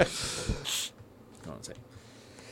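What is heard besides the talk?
sneeze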